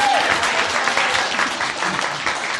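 A crowd claps steadily and loudly for a few seconds, a dense patter of many hands filling the room with warm applause, with a brief whistle-like tone at the very start.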